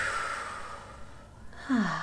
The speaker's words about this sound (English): Let's take a big collective deep breath together. I do this every so often. Let's breathe in through the nose and exhale through the mouth.